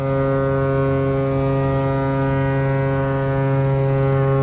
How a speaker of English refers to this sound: The ferry to Staten Island is just leaving.